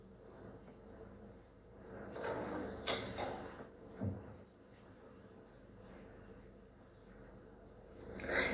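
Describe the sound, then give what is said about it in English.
A door is pulled shut, with a few soft knocks and rattles leading up to a firmer thud, then a final clatter near the end, against a quiet background. “Can you shut this door, please?”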